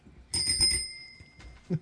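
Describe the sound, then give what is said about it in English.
A small, bright bell like a bicycle bell, rung for a correct answer in a quiz, rings once, clear, its shimmering tone fading over about a second before a soft knock at the end. “Turkey bell.”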